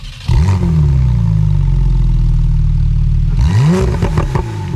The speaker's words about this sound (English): Number one, I will play you an engine sound and you have to guess which Porsche model it is.